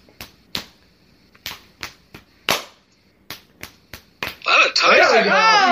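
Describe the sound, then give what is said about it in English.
About ten sharp, crisp hand slaps during a rock-paper-scissors game land at an uneven quick pace, some louder than others, before loud excited voices burst in and drown out the rest. “Just slapping flash”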